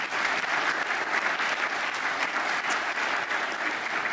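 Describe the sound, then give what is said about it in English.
A crowd at a STEAM education event in San Diego applauds elected officials, many hands clapping in a dense, even wash of sound that holds at a consistent loudness for several seconds without any voices. “All right, let's hear it for our elected officials.”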